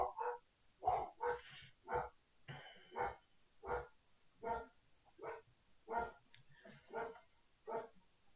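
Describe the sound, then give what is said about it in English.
Dogs bark over and over in a steady, insistent rhythm, about a dozen sharp barks with short pauses between, sounding somewhat muffled, with no talking, as they bark at someone walking in front of a house. “Apparently somebody walked in front of my house, so the dogs are kind of speaking to them.”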